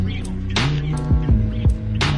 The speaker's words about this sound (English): you know the humming you hear in the background there? That's me and ….